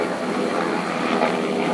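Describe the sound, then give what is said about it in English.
A helicopter drones steadily overhead, a continuous, fairly loud engine roar that holds even for the whole moment with no voices present. “Excuse me, I'm making a podcast. Excuse me, helicopter. Can you shut up?”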